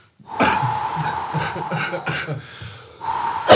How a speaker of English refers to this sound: Oh, I can't stop coughing when I'm laughing. It's ridiculous. Oh, dear.